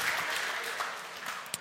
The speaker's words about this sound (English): You can clap for her if you want. Thank you.